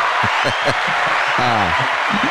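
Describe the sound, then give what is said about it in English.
A short burst of crowd applause sound effect, a steady wash of clapping with a few voices calling out and cheering over it, fairly loud throughout. “That's about as big as the crowd that you have on tour, right?”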